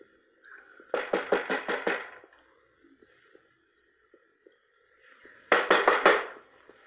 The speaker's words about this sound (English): Someone knocked, and there was nobody there. Someone keeps knocking on the door and won't let her sleep.